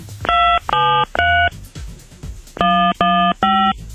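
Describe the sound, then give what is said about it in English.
Six short, loud telephone keypad tones, entered as a group of three, a brief pause, then three more at an even pace, as a caller enters the 5-digit zip code for an account, followed by the pound sign, on an automated phone line. “Please enter the 5-digit zip code associated with this account, followed by the pound sign.”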